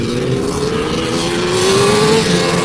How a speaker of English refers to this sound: Now we got a helicopter? Oh, my God.